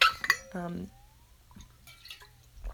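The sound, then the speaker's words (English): A glass of water clinks, followed by a brief gulp-like sound of someone drinking, then quieter clicks and light handling noises against a low background hum. “I need some water, sorry.”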